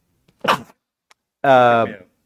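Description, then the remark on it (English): A single sharp, breathy sneeze bursts out, followed after a short pause by a drawn-out voiced sound from the same person. “God bless me. Let's be honest. God bless you.”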